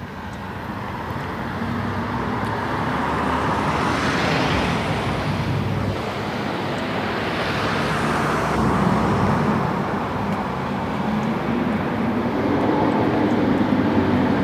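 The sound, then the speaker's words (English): A school bus rumbles past amid steady road noise, its engine swelling and fading as it goes by, with no voices present. “I thought it sounded like a school bus.”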